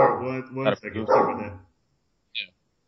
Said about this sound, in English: she's a barker, you know. She's a Australian cattle dog.